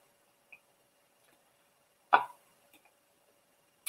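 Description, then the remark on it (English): One short, soft slurping sip breaks an otherwise quiet stretch, preceded by a tiny click and followed by a couple of faint ticks. No one speaks. “Let me just take a sip before I get started. I want you guys to hear that sip”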